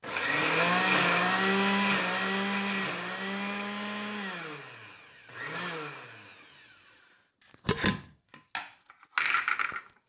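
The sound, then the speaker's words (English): A blender blending celery, onions, parsley, puree, serrano, garlic, tomato and cilantro whirs loudly and steadily, its motor pitch rising and dipping as the speed shifts, then stops and gives a few short pulsed bursts. No one speaks. “So I just happen to have this mixture of celery, onions, and parsley, and then I've got some puree, and then I've got a serrano, some garlic, and I'm going to put it all in the blender with a little bit of tomato as well, and the cilantro.”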